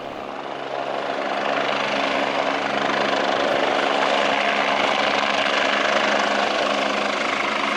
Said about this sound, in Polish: Helikopter oczywiście w tym kotle nie mógł wylądować, tylko ratownik z helikoptera zjechał na linię, zaczepił się z deską ze mną, z deską, on się zaczepił do doliny. Podwieszony na tym śmigłowcu lecieliśmy na lądowisko dla helikoptera w Jasnej,